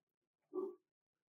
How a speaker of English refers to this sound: Yep, my doggy's barking. I'm going to wait a second.